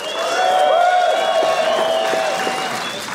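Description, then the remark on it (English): An audience cheers and claps in a sustained burst to vote for the story they believe is true, with high whoops and shouting voices rising over steady applause throughout. “Cheer when I hold my hand and do this motion over the person.”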